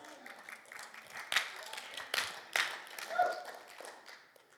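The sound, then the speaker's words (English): An audience claps in scattered, uneven bursts, with a few sharper loud claps rising above a murmur of voices and cheering before it fades out. “That seems like a nice thing to clap for and be like, ew, yeah, woo, Jesus.”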